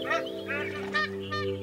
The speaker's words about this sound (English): Can you hear the oyster catchers? Cockatoos? Magpie geese?